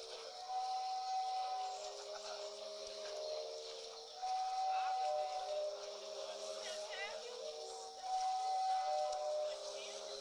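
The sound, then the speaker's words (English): The wave-driven sea organ of Zadar, its pipes hidden under concrete steps leading to the shoreline, sounds breathy, sustained organ-like tones that rise and fade in three long swells, several pitches held together over a steady airy hiss. “But this is the sea organ of Zadar.”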